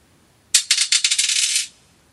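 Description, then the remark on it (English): Dice rattle and tumble across a hard surface in a quick burst of loud clicking impacts, settling after about a second with no voices. “The first dice has been cast. Here is dice number two.”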